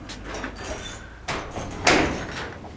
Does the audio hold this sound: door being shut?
yes